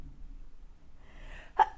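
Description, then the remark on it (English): A single quick sneeze, fairly loud, preceded by a short breathy intake, with quiet background noise around it and no talking. “Our first sneeze on the podcast.”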